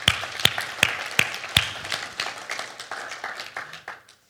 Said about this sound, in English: And so we want to give a round of applause for all of our small group leaders in the spring and all those who have stepped up this fall as well to help fill in the gap. So thank you very much.